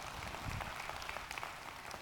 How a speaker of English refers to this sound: Wow, you just got applause for pouring.